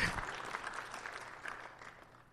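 Steady applause from a church audience, a dense crackle of many hands clapping at an even, moderate level that holds for a couple of seconds and then begins to taper off.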